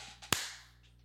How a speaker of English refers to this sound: Let me clap.